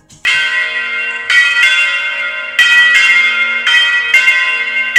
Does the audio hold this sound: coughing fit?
no